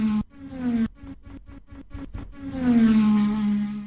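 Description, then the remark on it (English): NASCAR race car engines roar in a loud, buzzing drone as the cars go around the track, stuttering in rapid bursts, then swelling into one long whine whose pitch rises and falls as a car speeds past. No voices. “Rich, it was so good to hear those cars go around. What do you say we hear it one more time?”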